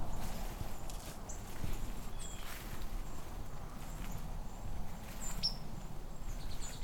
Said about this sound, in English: So that's another white-throated sparrow call, that little blip. White-throats have a lot of different little calls. The seep, there's the blip.